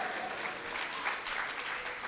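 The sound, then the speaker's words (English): A steady burst of applause, many hands clapping in a dense, continuous patter at an even loudness for a couple of seconds, with no voices over it. “Wow, tears, yeah, claps for crying, wow.”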